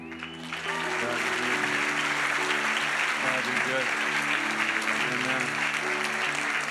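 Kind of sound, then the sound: crowd, hand clapping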